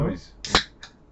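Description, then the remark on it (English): A Christmas cracker is opened and pops with one sharp, bright crack mid-clip, revealing a paper hat and a joke inside. It is preceded by a brief rustle and followed by short hissy bursts as voices murmur around it. “I'm gonna open another Christmas cracker, lads.”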